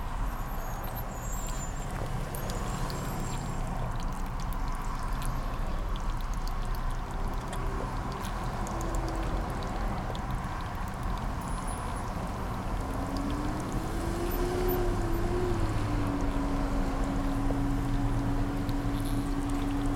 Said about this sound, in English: I want to take a little water break. Water break. I left my favorite water bottle at my work, and I'm really sad about it. And so I've got a new water bottle that I'm using, so it's weird.